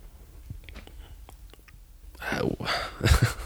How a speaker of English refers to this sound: I was just chewing the rest of that fisherman's friend.